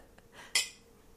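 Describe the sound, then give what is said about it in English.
Glasses of beer clink together in a toast: a faint tap, then one bright, ringing chime that fades quickly. The beer is Trappist Rochefort 10. No one speaks. “So let's cheers.”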